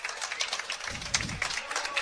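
An audience claps in a steady, dense round of applause, many hands patting at once in a continuous crackling wash that holds level throughout.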